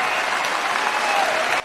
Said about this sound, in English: And I'm there cheering with the crowd when President Trump says this.